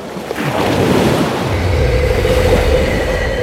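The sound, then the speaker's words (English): Loud sea waves crash against rocks in a continuous rushing roar with deep low rumble, building sharply in the first half-second and then holding steady, with no voices. “The water crashes against the rocks, millennia old and unmoving.”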